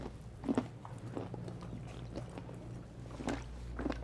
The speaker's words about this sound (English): Okay. No ASMR, no more crunching.